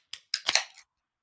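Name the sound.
beer can cracked open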